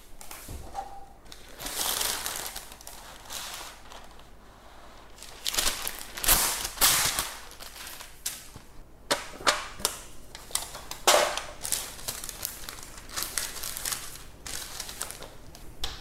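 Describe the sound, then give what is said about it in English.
Crinkling and rustling of baking paper being pressed and folded to line a baking tin for banana bread batter, with irregular sharp crackles and soft scrapes over about sixteen seconds, no talking. “I'm going to line it with baking paper.”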